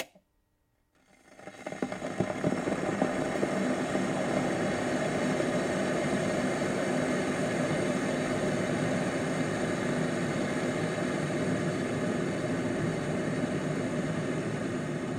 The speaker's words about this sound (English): Firstly, actress Kim Basinger, boiling a kettle for her morning cup of tea whilst wearing pyjamas and a dressing gown.